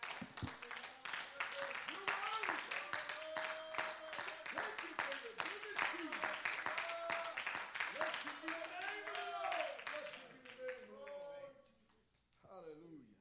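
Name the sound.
audience clapping hands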